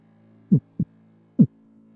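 sound effect, heartbeat sound effect

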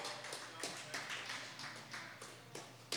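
crowd, applause

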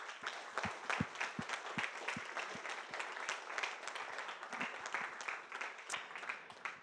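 crowd, audience applause

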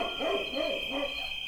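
animal, coyotes howling

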